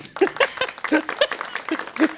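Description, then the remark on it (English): An audience applauds after an advertisement read for Capterra, with scattered claps and bursts of cheering voices, a lively, uneven wash of sound lasting a couple of seconds with no speech over it. “Is this the first time an audience has applauded ad reads?”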